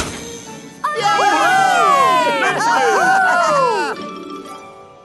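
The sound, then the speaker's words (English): A crowd lets out a loud cheer as the Christmas tree lights are switched on, lasting about three seconds, many voices overlapping in rising and falling whoops before it quickly fades to quiet. “They're meant to bring good luck," added Nia, at which the tree lights were switched on and everyone let out a big cheer.”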